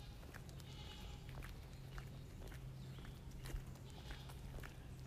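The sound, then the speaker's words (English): Goats bleat faintly a few times in the morning, with soft shuffling and hoof-like clicks and a steady low hum in a quiet outdoor setting. “yes, you might be hearing some goats.”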